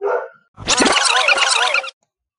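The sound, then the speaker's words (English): Dogs barking at workers building a wall: a brief bark, a short pause, then a loud, dense burst of overlapping barks lasting over a second before it cuts off. No one speaks. “So my dogs, who are barking at the guys build my wall at the moment.”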